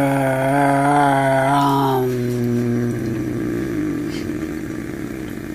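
A low, steady droning belly chant from a single voice on an out-breath, a sustained buzzy tone held for a few seconds before it fades into a rougher, breathy rumble.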